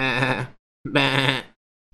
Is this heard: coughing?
no